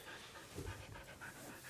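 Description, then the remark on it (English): A dog, Mishka, panting steadily, quick rhythmic breaths repeating over a couple of seconds with no one talking. “As you can hear, Mishka has made an appearance. You can hear her panting.”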